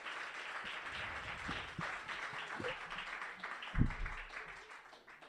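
A crowd applauds steadily for about five seconds, a dense wash of clapping with a few sharper claps and thumps standing out, heard from a moderate distance at fairly low volume.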